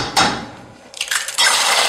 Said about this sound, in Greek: Φαγητό, σπάω αυγά. Άντε, και τα τηγανίζω. Γνωστός ο ήχος.